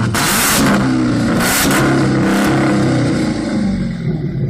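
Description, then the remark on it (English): A loud American muscle car's V8 engine revs hard with a deep, throaty growl, the pitch rising and falling in several surges before settling into a rumbling idle. No voices. “It's a growl like a. It's like a lion. Sounds so good, dude. That's an American car that you can buy, and I'm telling you, the when you're driving it, you're like, this is so nice.”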